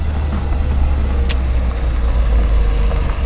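A car engine rumbles steadily on a road, a low continuous drone that holds fairly even throughout, like a vehicle easing off and slowing down, with no voices.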